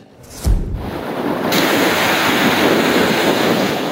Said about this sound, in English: More destruction, this time at Qualicum Beach on Vancouver Island. High waves combined with a king tide, sending logs, debris, and water across the seawall.